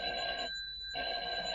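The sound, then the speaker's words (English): A telephone bell, played on a children's record as Genie the Magic Record turning into a telephone, rings in two short bursts separated by a brief pause, a bright, steady metallic jangle with a high ringing tone, heard alone with no voices. “Alakazing, I'm a telephone.”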